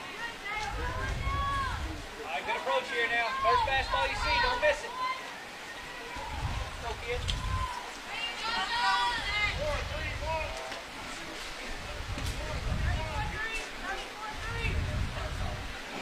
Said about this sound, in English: Rain starting to come down a little bit heavier. If you can hear the tin roof above us here on the Hudson home side.